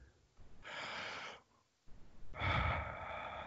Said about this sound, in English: Take a deep breath for me.